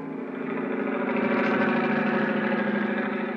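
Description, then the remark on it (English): A helicopter engine drones steadily as it flies out to sea from Cape Town, South Africa, a loud, continuous throbbing hum that holds even for a few seconds with no voices. “I don't know which was throbbing the most, the helicopter engine or my head.”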